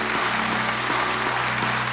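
An audience applauds a pastor's Father's Day message, a dense wash of many hands clapping at even loudness for the whole stretch, with a faint low hum running underneath and no voices.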